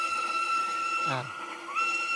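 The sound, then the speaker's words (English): A steam train's choo-choo whistle holds a steady, shrill tone, briefly wavers and bends downward midway, then settles back, fairly loud over a faint background. “This is, of course, a choo-choo. Steam train.”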